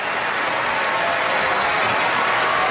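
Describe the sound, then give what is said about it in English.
Steady audience applause, a dense wash of many hands clapping at an even, sustained level throughout, with no voices standing out. “He's getting applause.”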